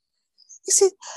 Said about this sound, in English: excuse me. Bless you.